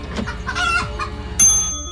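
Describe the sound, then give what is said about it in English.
A chicken clucks several times in short, choppy bursts from a chicken pork pie dispenser, followed by a bright, ringing electronic chime that lingers to the end. No one speaks. “Nope, that's the chicken pork pie dispenser.”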